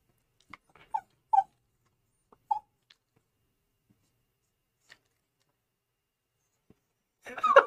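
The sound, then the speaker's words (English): A dog whimpers and yips in a few short, separate bursts, with quiet gaps between them, ending in a louder, noisier vocal burst. “Should we make him howl? You want to do the awoo?”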